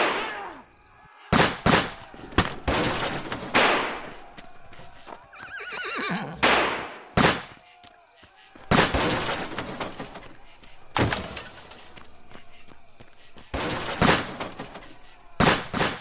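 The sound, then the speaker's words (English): Loud revolver gunshots crack out in an irregular volley, some in quick pairs and others spaced apart, each with a brief ringing tail, while a horse whinnies amid the commotion. “Williams' assassin slowly but obviously reached for his revolver, quietly pulled back the hammer, and as soon as it clicked in the midst of the silence, he blindly slung the gun at one of the deputies and shot.”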